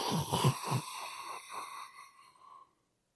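A long, hard, wheezing inhale as someone takes a drag on a lit low-tar cigarette, opening with a few rough, throaty pulses before settling into a thin, whistly draw that tapers off after about two and a half seconds.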